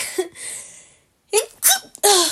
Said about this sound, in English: I'm about to sneeze, give me a second.